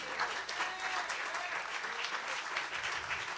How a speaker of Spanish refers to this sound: Otro aplauso de golf, muy bien, muy bien, muy bien.